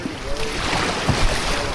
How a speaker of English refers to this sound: We round a bend, and the water grows louder as it rushes into a tight curve, flashing with rolling whitecaps. This stretch of river is known as Fern Gully